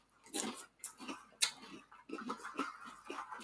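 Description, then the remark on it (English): Crunchy chewing of cereal, with irregular bursts of munching and a sharp spoon-against-bowl clink partway through, fairly loud and steady for a few seconds with no talking. “Yeah, I think the bowls are going to have to be a little bit smaller because I'm sure on the podcast it probably sounds like we're eating a lot.”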